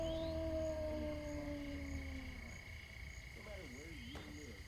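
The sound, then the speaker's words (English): A long, drawn-out wolf-like howl slowly slides downward in pitch, then gives way to a wavering, warbling cry against a low, noisy background. “It sounded like a wolf.”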